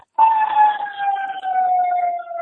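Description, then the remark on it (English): Fire engine sirens wail loudly and steadily, the pitch slowly sliding downward as the fire engines drive by, with no voices over it. “And, Oh, we got some fire engines coming here.”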